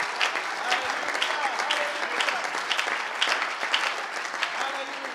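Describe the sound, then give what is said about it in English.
A large church audience claps steadily and densely for the Lord during a sermon, a sustained wash of applause without letup, with faint voices mixed in beneath the clapping. “If you believe it, if you receive that, would you clap your hands right now unto the Lord?”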